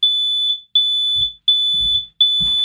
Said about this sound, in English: Have you finished yet? I've just turned the smoke alarms off.